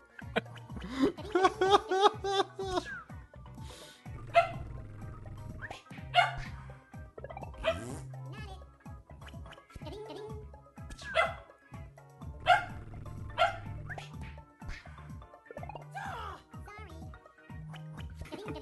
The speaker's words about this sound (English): Dog has gone crazy.